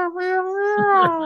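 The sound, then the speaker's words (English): A male pet cat gives one long, drawn-out meow, steady and fairly loud, with a low murmur of a voice rising underneath toward the end. “He is meowing.”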